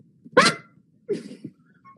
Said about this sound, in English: will you stop barking?